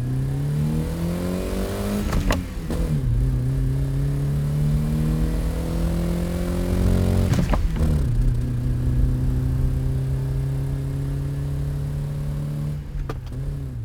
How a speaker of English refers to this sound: I can be entertained by the sound of the motor. I like to hear the car to stay connected to it. It's not uncommon for an enthusiast to drive for hours at a time without listening to the radio, without listening to anything but the sound of the motor.